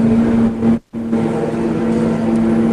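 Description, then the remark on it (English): Loud, steady roar of Formula B race car engines as the cars come up to the top of a hill for the final time, holding a constant droning pitch, with a brief cutout to silence near the start before the engine noise resumes. No voices are heard. “slowly pull away from Steve Winston as they come up to the top of the hill for the final time”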